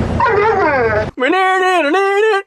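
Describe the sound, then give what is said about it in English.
A dog, in a sample from a Little Caesars commercial looped into a hip-hop track, yowls a drawn-out, singsong phrase that mimics the words "I love you": two loud, whining tonal bursts with rising and falling pitch, nothing else around it. “The sample of the dog saying I love you into that looped sample is one of my all-time favorite, like, 5 seconds in hip-hop.”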